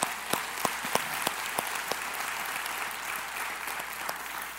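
An audience breaks into applause, starting with a few sharp, distinct claps that blend into a steady wash of clapping from a large crowd, with no voices over it.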